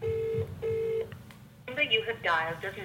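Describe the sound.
Two steady electronic ringback tones sound in a regular on-off pattern over a phone line, followed by a recorded-sounding voice speaking through the handset, saying the number dialed does not exist.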